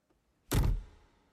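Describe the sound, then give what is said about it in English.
A single heavy thud of a main door swinging shut, loud, with a short resonant decay afterward and no voices. “Through the beaded curtain. Out the main door.”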